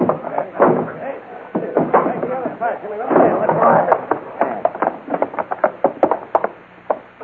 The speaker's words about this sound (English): Push the door in.